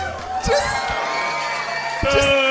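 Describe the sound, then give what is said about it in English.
A crowd cheers and whoops loudly for a couple of seconds, a dense roar of many voices with sharper whoops bursting out at the start and again near the end. “Crowd, what do you think of the Sorry, High Inquisitor?”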